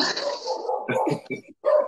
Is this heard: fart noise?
no